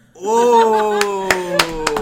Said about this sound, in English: Oh. I gotta get myself some claps right now.